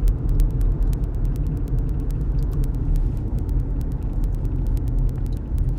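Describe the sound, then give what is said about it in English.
Steady, dense road traffic across four lanes, with cars rumbling past continuously and air brakes, a loud low engine drone filling the scene, and frequent sharp ticking clicks scattered over the top. No one speaks. “And of course, this guy's cutting over four lanes of traffic to make a left turn that he realized he just had to make.”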